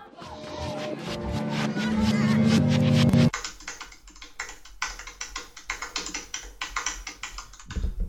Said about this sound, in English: That sounds like the fakest fucking typing I've ever heard. that's some real typing. It sounds like a fucking like cat on a keyboard.